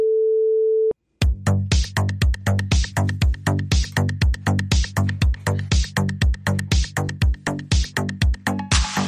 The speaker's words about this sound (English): I removed, pushing the Apple subscription podcast, but I'm just taking it out of the episode. So that's what that beep is. That missing information is the Apple subscription plug.